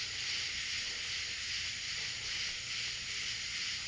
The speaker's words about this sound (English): My mom said these are cicadas. It's a kind of locust.